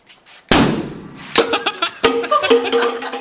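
A homemade bomb, lit and set off as a prank, explodes in a sudden, loud bang that bursts out and rumbles away, followed by several sharper cracks and pops in an uneven sequence over a lingering, ringing crackle.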